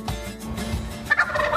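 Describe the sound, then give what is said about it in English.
A wild turkey gobbles in a rapid, rattling burst, loud, with no voices present; the warbling call rises into a brighter trill toward the end. “That's right, I said it, America's favorite bird, the wild turkey.”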